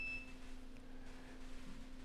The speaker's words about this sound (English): That beeping back there, folks, I think might be the battery supply to our whole feed. So, and make sure that there's power to the battery in the back corner. Or is that? Oh, that's, okay, never mind. Different beeping.